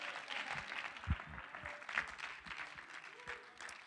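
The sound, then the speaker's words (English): An audience claps together, a dense, steady patter of many hands filling the space for a few seconds with some scattered voices underneath. “Clap your hands and say, I'm expecting it to happen.”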